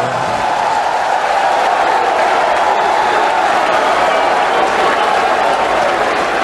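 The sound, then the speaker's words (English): A crowd applauds steadily for several seconds, a dense, even wash of clapping with some cheering mixed in, holding at a loud, constant level throughout. “And before I was so rudely interrupted by your applause, I was about to announce my colleague, my comrade, and my co-conspirator”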